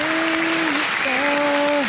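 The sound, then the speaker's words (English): Steady, dense clapping like applause fills the whole stretch, with a long held vocal note, like someone cheering, sliding slightly in pitch over the top. “And who we clapping for this week?”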